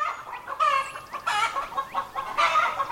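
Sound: chickens clucking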